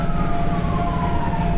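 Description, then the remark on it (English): A fire truck siren wails steadily over a low engine rumble on a street, its tone drifting slightly downward as the vehicle passes by, fairly loud and continuous with no talking. “Man, something's going on down the street. Rescue truck. Fire truck.”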